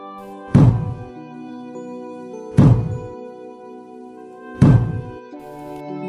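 Zen master Wondam, second head of Deoksung Chongnim at Sudeoksa temple, strikes his wooden staff (jujangja) on a floor three times at steady intervals of about two seconds, each blow a loud, low, resonant thud that rings out briefly before fading into quiet.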